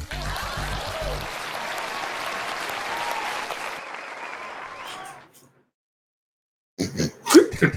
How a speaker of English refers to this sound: Please clap.